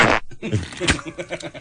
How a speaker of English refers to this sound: Is there something you'd like to say, Mr. Griffin? No. That's him talking over his fart to cover them.